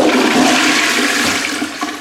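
A toilet flushes with a loud, steady rush of water that holds for about two seconds before starting to fade, with no voices over it.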